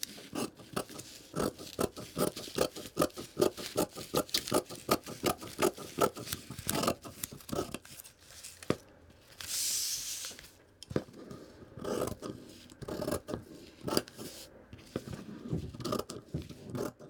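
Fabric scissors snip through cloth in a quick, steady run of crisp cuts, with a brief pause and a longer slicing swish before the snipping resumes, and no one speaking.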